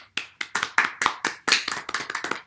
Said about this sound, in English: Definitely. Big applause. Big congratulations from the SJS Podcast to the Revitas.